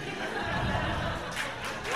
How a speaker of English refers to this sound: Oh, applause break.